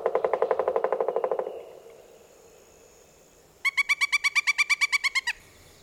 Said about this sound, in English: Other sounds included call and the drum of a pileated woodpecker. Pileated woodpeckers really love southern swamps where they nest in hollows or dig out their nest in rotting tree trunks.